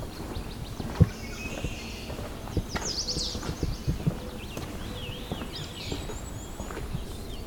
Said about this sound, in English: High-pitched ringing warble is the black and white warbler.